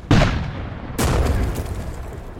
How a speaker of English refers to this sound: As Jeff Davis watches the battle and cheers on his gunners, a shell rips through the entire length of one of the gunboats, literally tearing a hole from bow to stern.